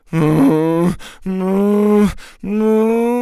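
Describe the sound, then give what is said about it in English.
A person's voice imitates a cow with three long, loud, low moans, each sustained and wavering slightly in pitch, separated by brief breaths, with no speech. “His face got all contorted, and he made moaning noises like a cow.”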